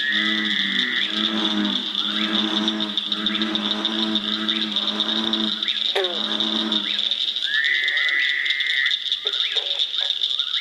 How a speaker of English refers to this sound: Jeff has recorded a CD of frog calls called Frogs and Toads of Southern Indiana.